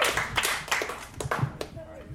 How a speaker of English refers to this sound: There he is, your final competitor, Mr. Zach Sherwin. Clap your hands for Zach.